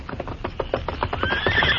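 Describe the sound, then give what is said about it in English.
The Lone Ranger's horse Silver whinnies loudly, its shrill, wavering neigh rising over a steady run of hoofbeats drawing nearer as it emerges from the underbrush in response to a whistle. “In response to the Lone Ranger's whistle, the great horse Silver emerged from the underbrush.”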